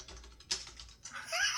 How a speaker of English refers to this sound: Man. Listen to that. I am going in. Furiously typing on his. What sounds like a TI 84. A TI 84. Yep.